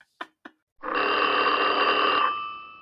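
Two quick clicks, then a loud telephone bell rings once in a sustained metallic trill lasting about a second and a half before cutting off. No one speaks.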